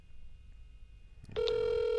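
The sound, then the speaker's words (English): A quiet pause, then a phone's outgoing ringback tone starts abruptly as someone's daughter is called, holding steady and fairly loud through the end, a single sustained electronic tone with no one talking. “We're going to call your daughter.”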